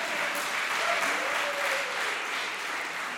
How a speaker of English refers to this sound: Yeah, y'all can clap for that.